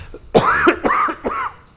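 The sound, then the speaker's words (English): Three dry, raspy coughs from a dry throat come in quick succession, fairly loud, each a short harsh burst with a slight voiced rasp, and no talking around them. “These days, when you cough, people think, oh! So, just dry throat, don't worry.”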